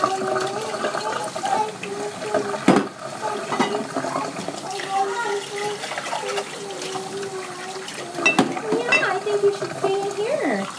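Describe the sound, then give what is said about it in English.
Water runs steadily from a tap in a kitchen as dishes are rinsed, a continuous splashing hiss, with voices, including a child's, talking over it throughout. “We need to rinse our dishes.”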